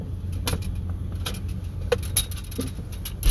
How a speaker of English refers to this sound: I'm going to move this grabber because it's going to get on my nerves.